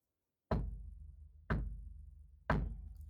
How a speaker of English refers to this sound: It was midnight when the knock came.